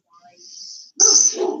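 dogs barking

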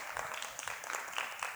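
round of applause

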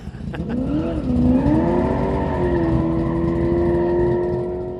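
muscle car engine revving

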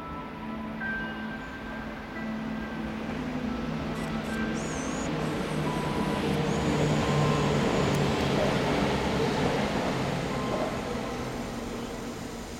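train passing

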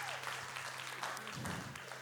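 audience applause

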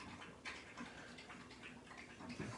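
dog lapping drinking water

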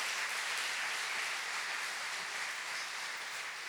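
audience applauding

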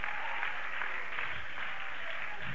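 audience clapping hands

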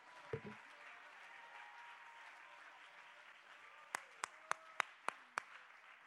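audience hand clapping

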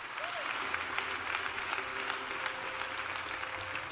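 audience clapping hands

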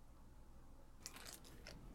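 chewing crunchy food

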